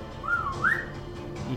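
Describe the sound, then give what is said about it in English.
A person gives a short whistled signal: a clear tone that dips, then sweeps upward to a sharp peak, lasting under a second before fading into quiet background noise. “Then I am going to whistle.”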